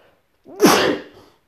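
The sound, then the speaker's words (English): A single loud sneeze: a short breathy intake that bursts into a sharp, hissy explosive blast, then trails off quickly into quiet. “Here comes a sneeze.”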